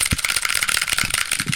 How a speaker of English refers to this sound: Wait, he's doing good for a keyboard typing montage.